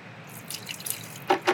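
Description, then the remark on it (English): Lemon juice is poured into a blender over labneh while making guacamole, a soft trickle with light splashes that ends in two louder, wet splats. No one speaks. “My lemon juice.”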